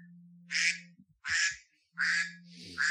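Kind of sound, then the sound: sound effect, duck quack sound effect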